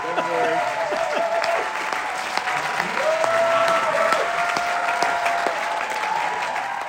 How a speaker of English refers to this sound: That applause you're hearing isn't what happened at the end of the show. That was the applause that I was talking about as the lights went down, and that carried on for a glorious 150 seconds.